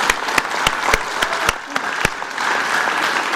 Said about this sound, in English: So we'd like to have a very big round of applause for our volunteers.